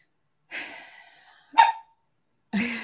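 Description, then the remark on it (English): Three loud bursts of a daunting roar, raspy and growling, each lasting under a second and separated by short pauses, with no one talking. “That was the daunting roar.”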